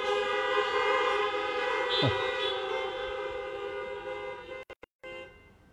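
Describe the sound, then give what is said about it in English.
Several car horns blare together in a long, sustained chorus of overlapping tones, holding steady for several seconds before cutting out in a few short bursts at the end. “Have you been called to salvation today? Honk your horn.”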